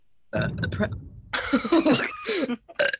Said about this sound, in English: Okay, so she's burping very low, SE. Oh, she just doesn't care.